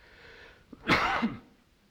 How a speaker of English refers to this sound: Sorry for the coughing, it's leftover COVID, right?